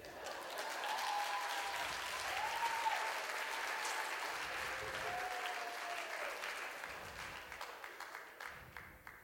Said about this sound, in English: If you're going to clap for me, clap for me well.